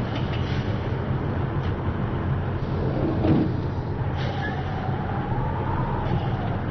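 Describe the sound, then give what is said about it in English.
A bus engine drones steadily as the vehicle drives at night, a continuous low rumble heard from inside with a faint whine rising and falling partway through. No one speaks. “Driver, does this bus take me to the end?”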